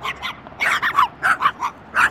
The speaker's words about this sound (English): His space is solar-powered and equipped with security cameras and patrolled by four tiny, long-haired chihuahuas who bark whenever a visitor approaches.